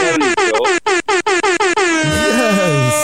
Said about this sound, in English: Hold on. Let me get your air horn, yes? Yes. Hold on. Let me turn the volume down before I get this air horn on because I know it's going to be a good one.